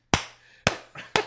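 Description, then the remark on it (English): Four sharp, loud slaps in an uneven rhythm, each a crisp smack with a short fading tail. The third is a little softer. There is no talking. “Now, is that your ball slapping against your thighs?”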